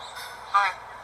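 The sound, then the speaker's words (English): A large raven gives one short, raspy call that imitates a spoken word, fairly loud against a faint, steady background hiss. “I want a raven.”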